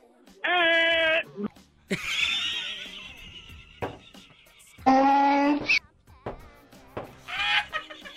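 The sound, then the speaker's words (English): Someone imitates a donkey's bray, a series of loud, strained hee-haw cries alternating between low and high pitched bursts, with short pauses between them. “Everyone needs to do a donkey sound.”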